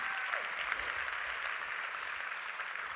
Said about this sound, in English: So come on, let's clap. Come on.